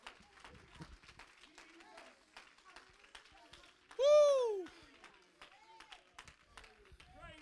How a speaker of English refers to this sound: Somebody give the Lord a hand clap of praise today.